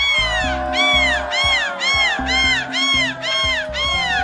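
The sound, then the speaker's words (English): A woman in a seagull-squawking competition imitates a seagull, letting out about eight loud, shrill squawks in a steady rhythm, each one rising and falling in pitch, over a low rumble of crowd noise; this squawk won the competition. “The lady who did that squawk won the competition.”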